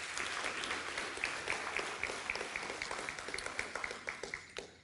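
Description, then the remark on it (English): An audience applauds steadily, many hands clapping in a dense, continuous patter that holds strong for several seconds before tapering slightly at the end, with no voices heard over it. “Give them another round of applause, please, this morning.”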